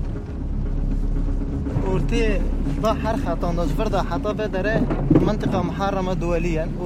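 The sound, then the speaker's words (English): A steady low rumble of a car driving through the mined international buffer zone between Syria and Turkey, heard from inside the vehicle, with road and engine noise continuous throughout while people talk over it. “This whole area has been mined, and now we're driving through it.”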